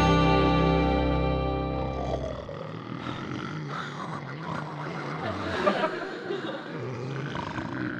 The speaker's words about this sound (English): How can a guy sleep in this bed with these three guys snoring? That's a pretty thing. That sounds like a soundtrack for Walt Disney's. These guys have kept me awake half of the night. Oh, that's snoring.